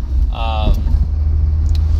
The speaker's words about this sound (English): I'm getting closer to work. Traffic has been okay. I know you guys really care about the traffic. I'm just crossing some train tracks now.